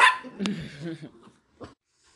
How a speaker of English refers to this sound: Sorry, Fifi started barking and I didn't want y'all to have to listen to that.